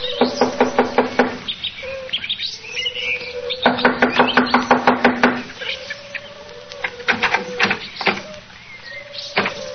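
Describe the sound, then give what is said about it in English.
Several bursts of quick, sharp knocks rap loudly against a wooden door, separated by short pauses, with a faint steady tone and some chirpy sounds underneath. “I'll knock on the door.”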